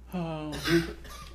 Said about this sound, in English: So excuse the coughing in advance.